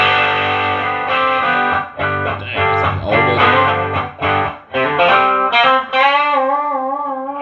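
An electric guitar plays through a distortion pedal with the gain turned all the way down and the filter knob at about 12 o'clock: a loud, harmonically rich run of sustained notes and chords, ending on a held note with wavering vibrato.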